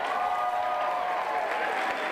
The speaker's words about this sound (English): James Torrey, please feel free to let your applause echo around the room one last time for James Torrey.